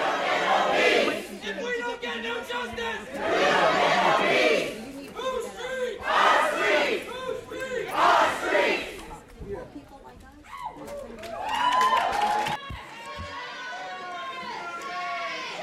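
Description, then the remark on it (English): A crowd walking into a city council meeting chants loudly in unison, voices rising in rhythmic bursts with shouted phrases and pauses between them, a dense wall of many people yelling together. “They walked in chanting.”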